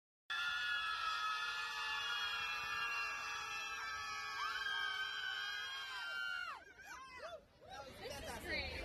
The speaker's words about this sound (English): Here's just a few libs screaming about it.